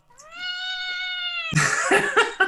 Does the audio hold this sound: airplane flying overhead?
no